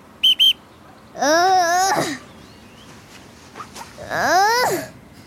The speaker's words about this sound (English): Ready? I'll set my stopwatch for 20 seconds. Let's see how many you can do before I blow my whistle again.